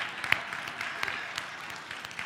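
Soft, scattered golf clap from a few people, light irregular pats with a couple of sharper claps standing out, quiet and brief with no talking.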